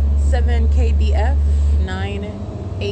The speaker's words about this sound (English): I'm documenting this because obviously I quickly got on the bus. OmniTrans arrived. So I will complete my my discussion getting off the bus. We're at Schaefer right now.